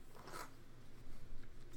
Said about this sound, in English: Sorry, I tried to pick my dice all up as a stack and dropped them